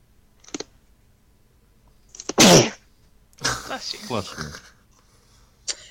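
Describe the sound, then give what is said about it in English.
A single loud, explosive sneeze bursts out after a quiet pause, followed shortly by a voice speaking, with a few faint clicks around it. “Bless you.”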